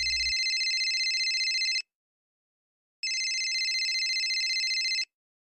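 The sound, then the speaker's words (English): A telephone rings twice in a classic warbling electronic trill, each burst lasting nearly two seconds with a pause between, loud with no voices. “It wasn't her phone, but she paid it no mind.”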